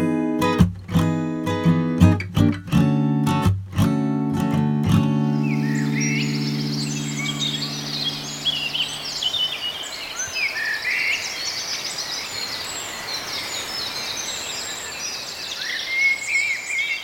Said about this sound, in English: So we dragged ourselves out of bed this morning at what felt like an ungodly hour, but it is peaking springtime now, and we have to get out and celebrate the sound of the dawn chorus at this time of year.